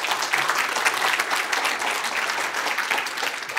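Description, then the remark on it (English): An audience claps steadily for several seconds for two missionaries from Guatemala, a dense, even wash of many hands with no single beat standing out and no voices rising above it. “We also have two missionaries from Guatemala here this morning, and they are at, you can clap for them too.”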